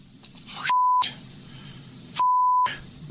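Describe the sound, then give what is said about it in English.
Two loud censor bleeps, each a steady pure tone lasting about half a second, cut into muffled live television audio of correspondent Ken Dilanian reporting on the Trump White House transition, with a short stretch of background sound between them. “Beeped it, but they couldn't.”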